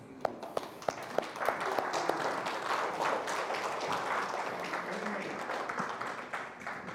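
audience applauding

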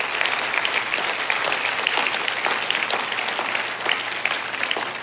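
audience clapping hands

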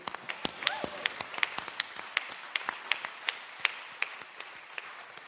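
audience clapping

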